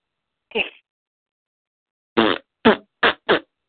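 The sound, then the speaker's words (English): Someone blows their nose: one short honking burst, a pause, then four quick, loud, snorting blasts in a row, with no talking in between. “I'm blowing my nose right now.”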